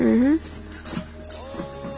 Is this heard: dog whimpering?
yes